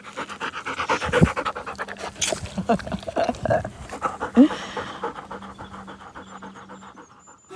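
A dog named Rain, a female, pants rapidly and steadily, its quick rhythmic breaths continuing for several seconds before easing off, with faint background noise.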